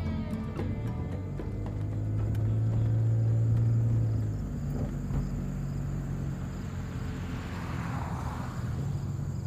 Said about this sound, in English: So I turn on Google Maps, and as it turns out, I'm only 7 minutes away. So I kick my car into drive and head over to my next abandoned adventure.